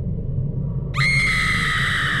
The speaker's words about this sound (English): I woke up to screaming.